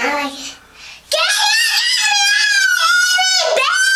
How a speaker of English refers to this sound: Right, you don't yell, you don't scream.